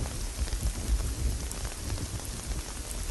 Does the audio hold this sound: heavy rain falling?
yes